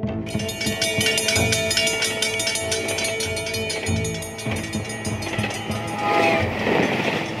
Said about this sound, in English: Before I fell asleep, and I remember I seen that train going by, and for some reason that just burned in my head.